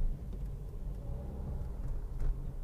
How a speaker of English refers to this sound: Man, there's so many fucking trucks.